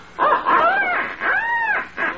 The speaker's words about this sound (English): I think I'll practice up with my duck call a little.